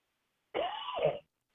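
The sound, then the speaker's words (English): A single short, rough cough bursts out, lasting well under a second, with silence before and after and no talking. “I didn't want to cough on the air.”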